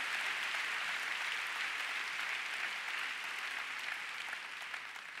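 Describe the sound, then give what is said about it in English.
An audience claps for the Lord steadily and continuously for about five seconds, a dense wash of many hands with no clear individual beats, fading slightly toward the end. “Come on, let's give the Lord a big clap this morning.”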